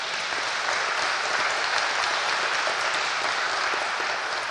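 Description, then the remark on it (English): Steady, sustained applause from an audience, a dense crackle of many hands clapping at an even loudness throughout with no talking over it. “Yes, you can clap for her.”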